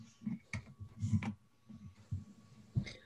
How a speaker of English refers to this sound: And if anything, it almost sounds like an impossibly technically proficient drummer playing something of the most like progressive and technical polyrhythms you've ever heard, with just thousands of clicking gears perfectly in time.